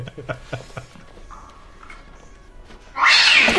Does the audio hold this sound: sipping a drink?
no